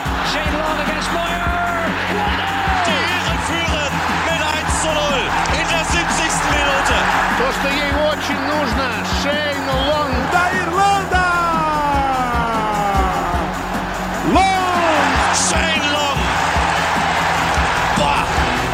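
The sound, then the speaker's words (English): A large stadium crowd cheers and applauds in a dense, unbroken roar, with rising and falling whistle-like tones threading through it, staying loud and steady throughout. “Take the applause of that crowd.”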